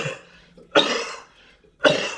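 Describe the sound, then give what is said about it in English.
Two forced, exaggerated coughs, about a second apart and loud, as a voice imitates a little girl fake-coughing while not sick, with quiet pauses between the bursts. “Her crazy ass be coughing, don't even be sick, just standing there.”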